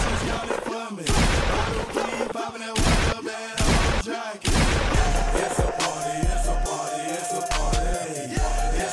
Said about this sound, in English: I need better gunshots. I need a louder one. I'm gonna raise the volume on it.